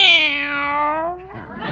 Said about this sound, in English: Meow. There's a good girl. Now go on into the kitchen and wait for me.